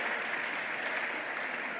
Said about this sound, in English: You see all of those people clapping.